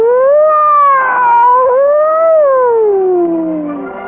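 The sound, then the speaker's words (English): A voice imitates a siren wail: one loud, sustained tone that wavers up and down for about four seconds, then slides downward and fades at the end. “And then out of the inside of it came the sound of a siren.”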